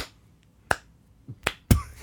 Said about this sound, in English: I got slow clapped.